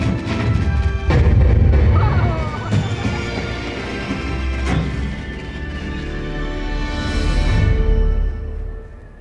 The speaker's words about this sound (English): As we approach, giant fireworks explode in the inky sky. Dazzling showers of light and blossoms of colorful sparkles fill our view.